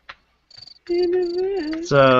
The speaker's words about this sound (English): Oh, we're talking about crickets. Thanks, Joe.